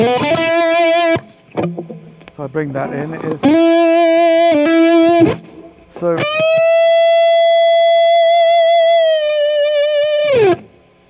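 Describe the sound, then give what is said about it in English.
Thick, heavily distorted electric guitar rings out in long sustained chords, three loud held blasts through an amp giving very thick, tube-style distortion, with a brief stretch of talking between the first two. “But now, of course, we have the the sounds amp. Very thick distortion.”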